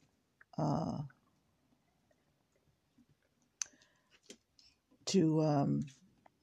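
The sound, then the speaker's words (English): A dog chewing on a hard plastic electrical socket makes a quick cluster of sharp clicks and crunches, set between two short voiced sounds before and after. “I think my dog wants to kill himself, so I think I better take away this socket from his mouth.”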